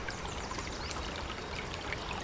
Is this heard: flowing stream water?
yes